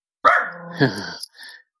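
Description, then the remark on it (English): A puppy lets out a drawn-out, high-pitched bark, breaking into a rougher growly edge, then a brief softer yip follows before silence. “Hey, that's puppy.”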